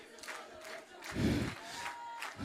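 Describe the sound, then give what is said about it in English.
A large crowd shouts praise and cheers together in a loud, sustained wash of voices, swelling briefly in the middle, with clapping mixed into the roar. “Lift up your voice. Clap your hands.”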